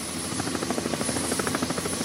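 A helicopter drones overhead during a search for a missing person, its rotor chopping in a rapid, steady pulse over a broad engine roar. The sound is loud and continuous, with no voices.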